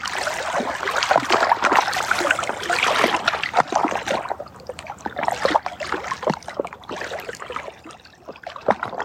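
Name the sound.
lake water lapping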